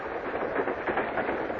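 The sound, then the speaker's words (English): A steady rumble of a moving train, with faint rhythmic clacks of wheels passing over rail joints repeating every few tenths of a second under a constant wash of noise. “All the while in the train that carried me towards home, I kept chuckling to myself.”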